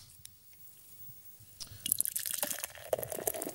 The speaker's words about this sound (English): can you pour us a beer while you're out? I think it's time we do a little. I can pour the beer. That's fine.